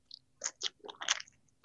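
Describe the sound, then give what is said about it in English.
Crunchy chewing of food, with a handful of irregular, crisp bites and crunches spread over a second and a half, loud, with no talking. “No, like you trying to mess with the mic or something, and I see you so like still chewing, and it was all right.”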